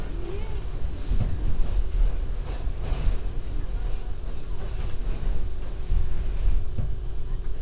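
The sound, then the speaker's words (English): A Times Square-bound 7 subway train rolls between stations toward its last stop, Times Square, 42nd Street, with a steady, heavy low rumble and occasional rattling clacks of the cars. The noise stays loud and constant throughout, with a faint muffled voice underneath. “Stay Times Square bound 7 train. The next and last stop is Times Square, 42nd Street.”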